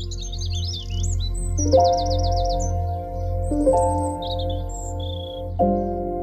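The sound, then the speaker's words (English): Birds chirp and sing outdoors at an allotment garden with no traffic noise, with quick high tweets and a rapid trilling phrase over a steady low drone. Calls come in bursts throughout, with no one speaking. “What I love is the fact that there's no traffic noise anymore, and you just hear the birds and you're in an entirely different world.”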